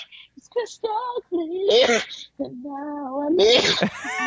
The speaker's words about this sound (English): You sound like a cat sneezing. Do I sound like one of the cats that I sent you?